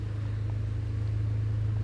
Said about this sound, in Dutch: Kijk hoor, een hele luidruchtige auto hier. Die had je niet, hè, toen? Nee, die had van je toen van niet. Van die turbo-injectie.